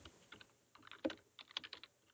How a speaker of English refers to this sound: Oh, my God. What the hell is the sound? You need to move your microphone away from where you're dragging dice.